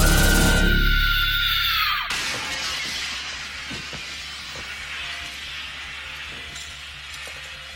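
A coffee table smashes: a loud crash of something breaking, with glassy shattering and clinking as pieces scatter and settle, the debris tinkling and rattling for several seconds afterward. No one speaks.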